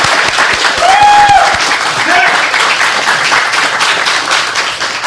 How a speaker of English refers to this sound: And lastly, of course, as always, I want to get a round of applause for our producer here